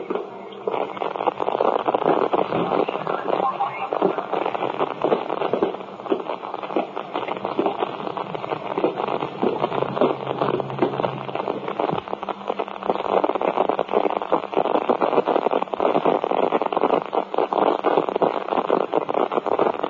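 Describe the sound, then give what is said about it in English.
A steady wash of crackling radio static fills the whole stretch, harsh and loud, with dense popping bursts running through a constant hiss and no voices coming through. “I mean, there's so much interference.”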